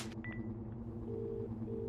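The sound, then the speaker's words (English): Telephone keypad tones as someone dials an international phone number: a few short electronic beeps, one high and brief, then two longer steady tones with a gap between them, quiet over a low, constant hum. “is for you to die quietly while I phone her.”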